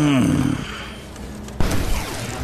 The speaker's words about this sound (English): Yeah. Snaps with a loud crack. And now it's only a tiny little piece that is embedded in his leg.